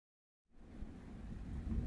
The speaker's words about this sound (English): The fifth and final day of Camp Kiwi and the Bird starts with a storm. The skies rumble, and rain pelts the ashen remains of Cabin 3, the still bubbling quicksand at the volleyball court